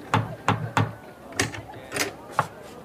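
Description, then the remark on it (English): Knocking on a small, plain wooden door set in a stone wall on one side of a square: three quick raps, a short pause, then three more slower, evenly spaced knocks, moderately loud. “On one side of the square, set in a stone wall, was a mean little door of wood.”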